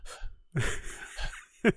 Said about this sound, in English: Just shallow breathing. You hear that? That's me shallow breathing.